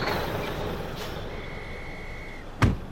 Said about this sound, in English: Whoa! That's a delivery truck.